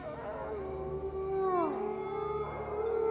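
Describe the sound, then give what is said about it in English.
Several drawn-out, wavering howls overlap in a loud chorus, their pitches sliding up and down together like a pack of wolf-like creatures calling, with no talking. “That's the pack. I think they're calling it home.”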